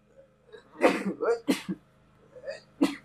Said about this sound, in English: Like, I've been – hold on, I need to sneeze.